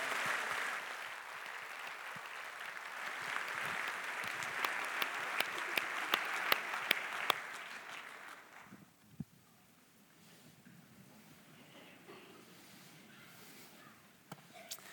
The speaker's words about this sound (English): Hey, thanks for cheering Cohort 5 on together.